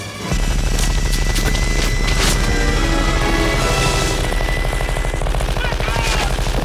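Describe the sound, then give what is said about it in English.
A minigun in a movie clip fires one long, unbroken burst, a loud, dense roar of rapid shots blurring into a buzzing stream that keeps going for several seconds, with no talking. “All painless is waiting.”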